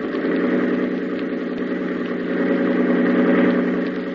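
A boat engine runs hard at full throttle, a loud, steady droning roar with a rough vibrating hum that holds level throughout, with no voices over it.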